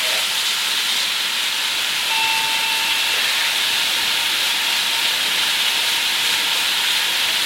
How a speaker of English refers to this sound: Now I'm going to rinse off this plate because I was going to use glass plates.